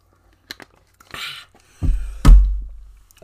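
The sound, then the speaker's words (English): Quiet drinking sounds as a person takes a swig of water: a few small clicks, a brief rustle, then two heavy, muffled gulps or thumps. No one speaks. “So, sorry guys, just going to have another swig of some water.”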